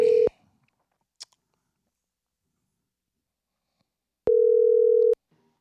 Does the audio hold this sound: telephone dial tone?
yes